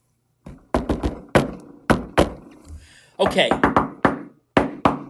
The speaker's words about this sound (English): And don't forget the secret knock.